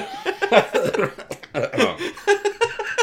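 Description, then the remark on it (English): A loud fit of harsh, sputtering coughs comes in rapid bursts over about three seconds, with some breathy, laugh-like gasps mixed between them. “I almost coughed up some gunk.”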